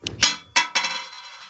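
A coin clatters onto a small circular coffee table, bouncing with several bright metallic clangs before ringing out into a fading shimmer.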